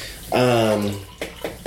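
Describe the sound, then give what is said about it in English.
Water pours into a glass in a short, steady stream lasting under a second, followed by a few brief clinks or knocks. “And then you want some more water”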